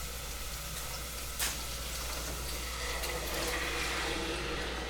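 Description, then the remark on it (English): A steady sizzling hiss as sauce is poured into a hot cooking pan in Florida, with a brief louder splash near the start and bubbling crackle continuing throughout, no voices. “And I'm going to pour in the sauce.”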